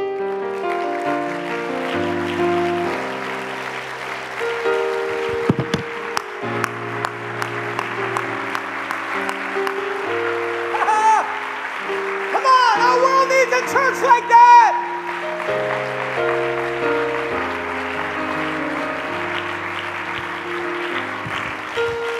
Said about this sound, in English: Stand. I just want to celebrate that for a moment. Go ahead. Would you clap hands one more time, because that means so much more than what it is on paper.